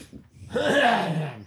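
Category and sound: human body sound, throat clearing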